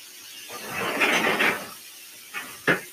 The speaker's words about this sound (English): I don't know if you can hear that chicken. It's probably loud. It's sizzling.